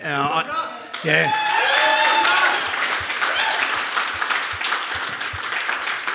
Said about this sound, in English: But to just be able to hit the goal, the crowd, everyone stood up and clapped and it felt like it went for a very long time. But it's just one of those special moments in footy that we all got to be a part of.